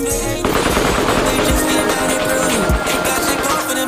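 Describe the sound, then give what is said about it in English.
Rapid bursts of automatic gunfire rattle loudly and continuously, a dense sound-effect volley of repeated shots with sharp booming hits, unbroken for several seconds. “Gunshots one time.”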